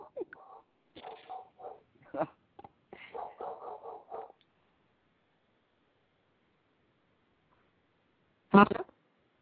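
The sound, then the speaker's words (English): A dog gives a single sharp, loud bark while its owner is on air, cutting through a long stretch of quiet after someone has been talking briefly at the start. “I heard a dog barking.”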